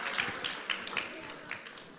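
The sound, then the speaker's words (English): Steady audience applause as a family comes up to be interviewed, a dense patter of many hands clapping at an even level for about two seconds, with no clear voices over it. “We need more applause than that.”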